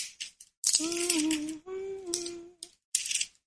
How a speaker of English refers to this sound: Let me just go there right now. Hear me turning the pages.